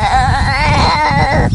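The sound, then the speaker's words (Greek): A newborn goat kid, just trying to open its eyes, bleats in one long, loud, quavering cry with a wavering pitch, lasting over a second, with no talking. “Κατσίκι, ναι.”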